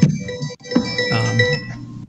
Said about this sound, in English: I'm hearing music in the background. I think, yeah, my phone was ringing.